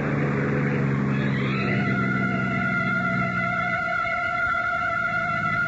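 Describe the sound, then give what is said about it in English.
A car engine revs up and pulls away, its droning pitch climbing in the first seconds and then holding steady as a loud, continuous hum with no voices. “We'll dump the cab and get into our car.”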